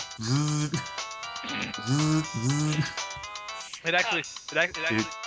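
A phone ringtone plays a bright, bouncy melody of short repeating tonal phrases, loud, running for several seconds with no talking over it.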